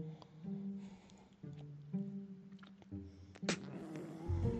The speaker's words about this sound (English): That being said, there is a cat rubbing up against him at the same time. There's a cat just going ballistic next to me. Oh, I was about to say she's laid down, but now she's back up.